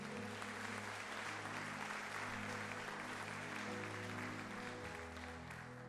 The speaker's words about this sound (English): it's such a blessing to have her here and just to see her being baptized. So give her a hand clap this morning.